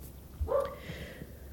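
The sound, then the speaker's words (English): A single short dog bark rings out, moderately loud, followed by quiet background hum with no talking. “Oh my gosh, the dog is so obnoxious.”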